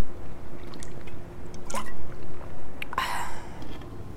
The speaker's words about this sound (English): I'm just going to drink the rest of this water.